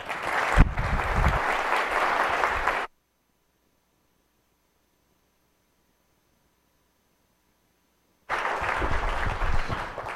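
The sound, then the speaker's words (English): Loud, dense audience applause with a steady crackle of many clapping hands, cut off abruptly into several seconds of silence before the clapping returns just as strongly, welcoming Italian Prime Minister Gentiloni. “So would you, with your warm applause, please welcome Prime Minister of Italy, Prime Minister Gentiloni.”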